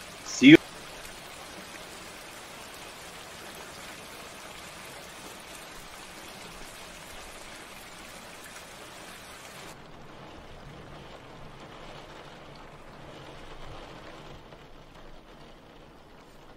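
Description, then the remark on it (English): Steady rain hisses outside in a continuous, even wash, with a single sharp knock near the start; partway through, the rainfall turns duller and more muffled. “It's raining outside.”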